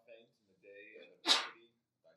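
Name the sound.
sneeze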